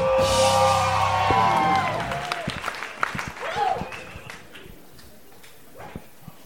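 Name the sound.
audience applauding and cheering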